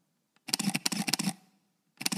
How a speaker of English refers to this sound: Give me that M10 shutter. Oh, all right, hold on. There it is. On.